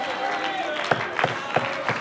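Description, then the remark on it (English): An audience claps in a steady rhythm, with about four sharp claps landing at an even beat over a loud, continuous wash of crowd voices and shouting. “Come on, somebody clap your hands and shout a little bit now.”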